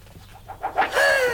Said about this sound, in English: Oh! It's an owl.